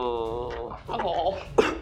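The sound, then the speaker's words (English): A voice imitates an asthma attack: a strained, wheezing rasp that turns into gurgling, choking noises, ending in a sharp gasping burst. Loud and alone, with no words spoken. “Yeah, you dust them, and they go full asthma attack, just like.”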